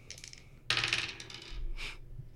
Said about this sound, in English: And let me get out his stats. Oh, why am I rolling three dice?